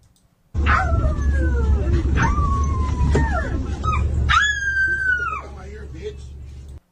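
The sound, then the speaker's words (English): A woman howls like a dog on a bus, drawn-out wavering wails that rise and fall, loud over a constant low rumble, with a final long high howl that trails off. “So, a lady, I won't say her race, just starts howling like a dog, and some guy, I won't say his race, says, get the fuck up out my ear, bitch.”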